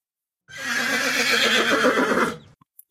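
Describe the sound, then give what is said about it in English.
A female horse named Taki lets out a single loud, drawn-out neigh lasting about two seconds, clear, trailing off into a couple of faint clicks at the end. “For those of you who don't already know, Taki, as she's happily known, is a horse.”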